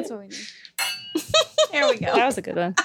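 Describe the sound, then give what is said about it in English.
Glasses clink together in a toast, a brief bright ringing chime, surrounded by overlapping voices and lively chatter. “I need a cling, so yeah, that's what we need. There we go.”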